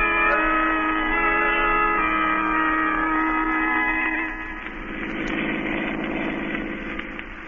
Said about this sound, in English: That's why we're driving down here.